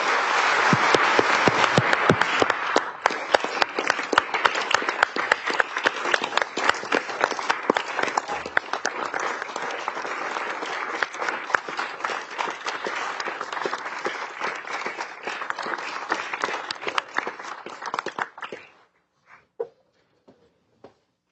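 Sustained loud applause from a large crowd, dense rapid clapping holding steady for about eighteen seconds before quickly dying away to a few scattered claps, given for a newly hired public school educator and all of the state's educators.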